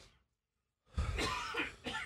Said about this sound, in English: We're having a cough-a-thon in here, if you can't tell. Oh, my Lord.